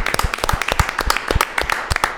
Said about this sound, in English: Ladies and gentlemen, ladies and gentlemen, clap it up.